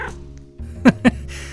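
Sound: cat meowing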